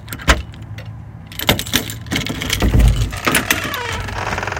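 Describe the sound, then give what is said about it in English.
Keys jingle and scrape in the lock of a house door, followed by a sharp click and the rattling, creaking sounds of the door being opened, with no voices. “She gave me her key. I have it on a chain around my neck.”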